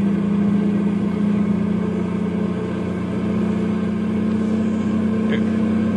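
A truck loaded with nitroglycerin drones steadily as it drives downhill at dawn toward the town of Landslide, a constant low rumbling hum at even volume throughout, continuous with no pauses.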